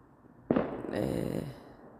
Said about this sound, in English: I hope those are fireworks. I think they are.